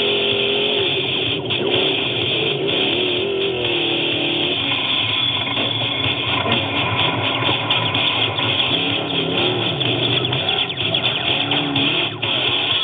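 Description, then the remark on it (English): Loud, continuous roar of trophy truck engines revving hard in a Score International off-road race at San Felipe, heading toward El Diablo Dry Lake Bed at race mile 54, the pitch rising and wavering as they race along, filling the whole stretch without any talking. “Kizar is still holding on to the lead as the trophy trucks head towards El Diablo Dry Lake Bed at race mile 54.”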